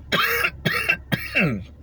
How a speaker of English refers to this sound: I'm smoking this joint, by the way. That's why I'm coughing.